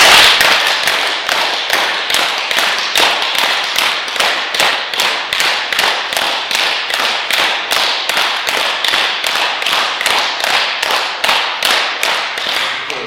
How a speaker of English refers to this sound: And we are clapping hands, not just clapping like this, but putting our hands up our head and then clap as hard as you can for 30 times.